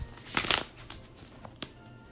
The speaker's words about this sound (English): I'm going to shuffle these again.